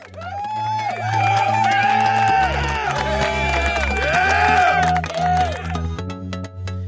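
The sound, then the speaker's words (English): A loud crowd cheers and whoops, with scattered clapping, over a steady, booming bass-heavy backing that continues throughout. “And I just want to give a round of applause for all of you all for listening.”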